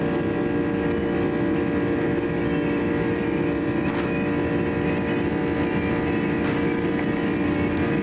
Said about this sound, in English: Now you're at max power because you can hear that buzz sound on that Rolls-Royce RB211 ultra-high bypass. Listen to this, baby.